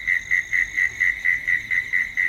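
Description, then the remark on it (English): A mole cricket chirps in a steady, rapid series of about ten even pulses, a clear buzzy tone repeating with no pauses, with no voices. “I think that might be a mole cricket.”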